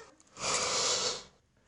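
A single yawn, a breathy, airy exhale that swells for nearly a second and then fades, with no talking around it.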